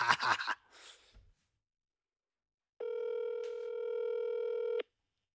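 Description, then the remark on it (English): A telephone number being dialed to call a listener from Sarnia: a few brief taps and a breathy rustle, a short pause, then one steady electronic phone tone holding for about two seconds before cutting off. “And I'm going to call her and see what the hell she's talking about.”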